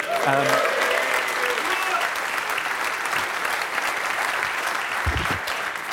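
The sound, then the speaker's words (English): A crowd applauds and cheers as a guest comes on, with dense, crackling clapping and cheering voices rising through it, loud and sustained throughout, with a brief low thump near the end. “So you see, even when you come on, you get that cheer.”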